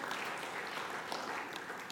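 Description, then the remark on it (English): A crowd gives brief, scattered applause, a soft, steady patter of claps with no sharp peaks or cheering, sounding lukewarm and subdued throughout. “She deserves applause.”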